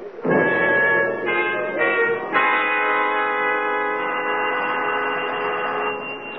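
A doorbell rings with a sustained, buzzy electric tone that shifts pitch a few times in the first two seconds, then holds steady and loud for several seconds before cutting off. No one speaks, and no one answers the bell.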